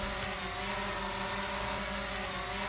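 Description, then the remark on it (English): A quadcopter drone flies, its rotors producing a steady, loud buzzing whine with layered humming tones that holds constant throughout, with no voices. “Sorry, I couldn't hear you over the sound of my drone flying.”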